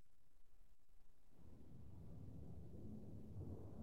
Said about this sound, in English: You can hear the old storm.